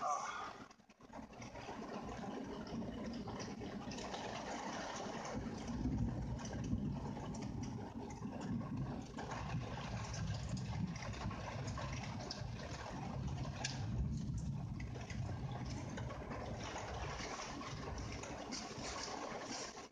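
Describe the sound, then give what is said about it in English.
A steady, dense roar of heavy rain during a thunderstorm fills the whole stretch without letup, with no distinct thunderclaps standing out, and a faint voice murmurs beneath it. “It is thunderstorming here and I'm kind of rained in.”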